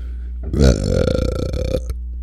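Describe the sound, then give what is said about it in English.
A long, loud belch that starts with a deep burst and then rumbles on in a rattling, gurgling drawl for over a second before cutting off. “Ain't stopping the burps.”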